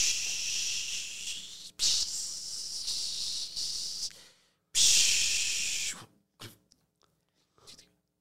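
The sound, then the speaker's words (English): A voice imitates a T-bone steak sizzling on a barbecue with long, loud, hissy bursts of breathy noise, two main stretches separated by brief gaps, then trailing off into a few faint short hisses. “Sizzle.”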